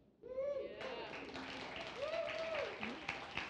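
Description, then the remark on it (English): An audience breaks into steady, dense clapping that carries on throughout, with a few high, drawn-out cheers and whoops rising over the applause, after congratulations on a couple's new baby. “You guys, you're clapping before you even know what happened, unless you saw it on Facebook already.”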